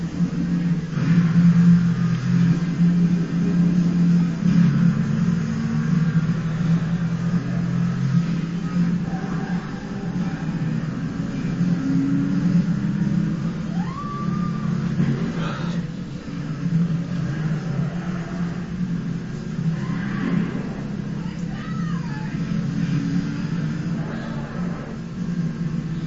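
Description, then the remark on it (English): A car engine drones loudly and steadily throughout, its pitch rising and falling as it revs and shifts while the car weaves in and out of traffic on a highway at night, with a couple of brief higher whines cutting through near the middle and end. No voices. “He's just driving about like a maniac, swerving about the lanes at random when he could just follow him.”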